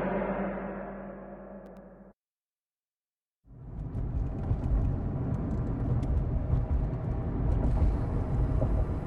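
A truck engine rumbles steadily while driving, cuts out for about a second of silence, then resumes as loud, continuous low road noise and engine drone, with no voices.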